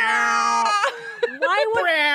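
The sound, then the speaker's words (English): A voice imitates a Godzilla roar: a long, loud, strained wail with a raspy, shrieking edge. It breaks briefly a few times and wavers in pitch for about two seconds. “What's a Godzilla noise? A roar?”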